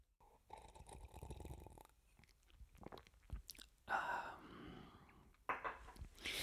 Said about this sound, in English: In fact, I'm going to take a sip right now.